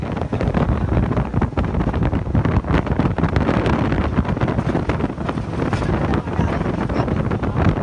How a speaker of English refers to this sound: So in this part, we're reaching, like, extremely high speeds out in the open water, where I nearly lost my hat twice.